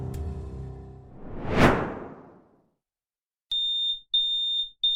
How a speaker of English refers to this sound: visits her father and finds the smoke alarm ringing. Oh, shit. Papa? A burnt pan filled with smoke sits on the stove.